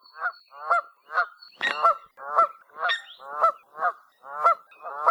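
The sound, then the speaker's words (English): Repeated loud Canada goose honks, about a dozen evenly spaced calls in steady rhythm, clear with no talking. “They're particularly noticeable overhead when flying in a characteristic V formation, honking loudly.”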